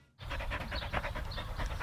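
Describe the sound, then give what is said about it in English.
A dog pants rapidly and steadily, quick rhythmic breaths repeating for a couple of seconds after a brief silent start, fairly loud with no talking, as it is sent to fetch a ball. “Go get it, boy. That's a good boy.”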